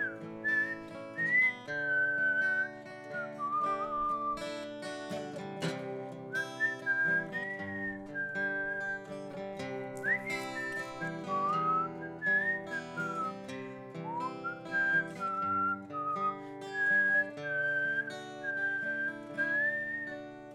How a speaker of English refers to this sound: That's really good whistling.